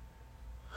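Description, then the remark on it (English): A quick breathy intake followed by the start of a sudden sneeze burst at the very end, fairly quiet, with no talking. “Excuse me. Bless you.”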